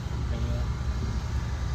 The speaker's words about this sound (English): His car is still running in the middle of the street.